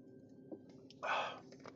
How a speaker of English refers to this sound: Sorry. Drinking some water.